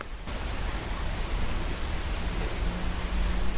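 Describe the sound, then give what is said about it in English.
Steady, fairly heavy rain pours down in the evening as it gets dark, a dense, continuous hiss that stays loud and even throughout, with a low rumble underneath, no thunder and no voices. “Rain has arrived, as you can hear. Raining.”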